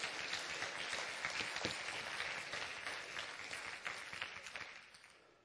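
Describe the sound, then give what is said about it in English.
An audience breaks into sustained applause as a hand clap of praise to the Lord, a dense wash of many hands clapping steadily for several seconds before gradually thinning out toward the end. “Come on, get the Lord a hand clap of praise.”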